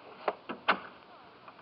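household object, door closing

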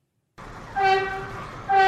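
vehicle, subway train

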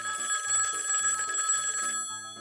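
signal or alarm, telephone ringing

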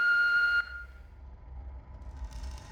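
signal or alarm, answering machine beep

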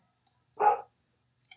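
animal, dog barking

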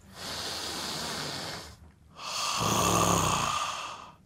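human body sound, deep belly breathing

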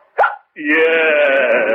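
human body sound, hiccup

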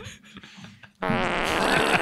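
human body sound, fart

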